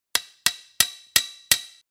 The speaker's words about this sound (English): Winnie Benn is at the front gate of the farm, nails puckered into the corner of his mouth, furiously hammering with his hoof at what appears to be an old sign on a fence post next to the entrance.